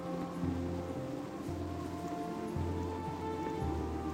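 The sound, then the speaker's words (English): Steady rain patters on surfaces with a gusty wind rumbling underneath, a continuous wash of sound with low gusts swelling and easing every second or so, as wind and rain pick up outside a cathedral. No one speaks. “As we depart from the cathedral, the wind and rain begin to pick up.”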